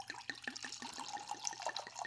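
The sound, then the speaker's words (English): Freemark Abbey Sauvignon Blanc 2018 white wine glugs steadily from a freshly opened bottle into a glass, a quick rhythmic gurgle of about a dozen pulses, clear with no voices over it. “And I'm going to pour us a glass.”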